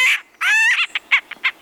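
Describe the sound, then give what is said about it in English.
A woodpecker on the roof of a cabin in California calls loudly: a harsh, drawn-out squawk followed by a quick series of short, raspy chirps, with no voices present. “A racket on their roof drew them outside, where they spotted a woodpecker pounding away at the shingles.”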